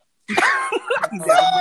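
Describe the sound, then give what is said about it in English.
A loud cough bursts out abruptly after a brief silence, followed by rough, voiced throat sounds that trail on for about a second. “wait, can I cough real quick?”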